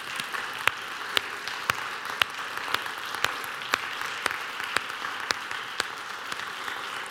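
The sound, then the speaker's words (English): A church audience on Palm Sunday gives a sustained round of applause of appreciation lasting several seconds, a dense wash of many hands clapping with a few sharper, louder claps popping out at a fairly steady beat. No one speaks. “And I'd like to ask you, I know it's Palm Sunday, but I think we can do this, is to show our appreciation for them with a round of applause.”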